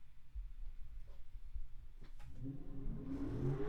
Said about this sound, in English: If you didn't hear that, somebody just revved their fucking engine on my street.